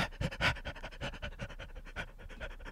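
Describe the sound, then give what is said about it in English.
Rapid, rhythmic dog-like panting with a sharp bark-like burst near the start, fairly loud; it is a human voice imitating a dog, with no talking. “You can go ahead and edit in what that dog sounded like before, and you'll see that wasn't a real dog.”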